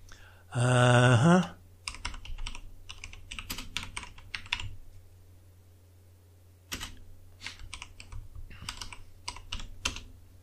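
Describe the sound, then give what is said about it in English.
A short, loud electronic tone sounds, followed by computer keyboard typing in quick bursts of clicking keys as someone runs a quick check on a keyboard that is not working properly, a pause, then another run of rapid typing. “Oh, would help if my keyboard worked.”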